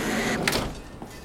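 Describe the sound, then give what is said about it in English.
A windbreaker jacket being zipped up in chilly mountain wind, with a backpack, before a hike: a short, bright rasp of a zipper over a steady background hiss, followed by a faint soft click. No one speaks. “Let me just grab my backpack, zip up my windbreaker.”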